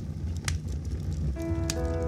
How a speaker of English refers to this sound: Set to sleep-inducing music and this beautiful fireplace.